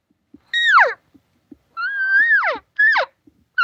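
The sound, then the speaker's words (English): A hunter's elk cow call imitation: three loud, nasal mews, each sliding downward in pitch, the middle one longer, with a fourth starting at the end. No talking. “They go, okay, I'm going to cow call.”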